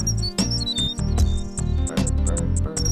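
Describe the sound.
A bird whistle blown into a microphone trills and warbles in quick, high-pitched chirps and sliding tweets, repeating throughout over a loud, steady low backing of music with regular thumping beats.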